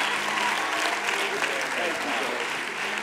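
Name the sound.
audience clapping hands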